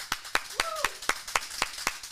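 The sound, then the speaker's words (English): A steady run of about nine sharp hand claps at an even, brisk pace, with a brief rising-and-falling vocal whoop heard early on between the claps. “Round of applause for being the 16th podcast in the world.”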